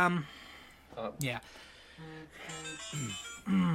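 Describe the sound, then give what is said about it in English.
A short electronic phone ringtone plays a few steady melodic notes in quick succession, with people's voices talking over and around it. “So, yeah, that was my ringtone.”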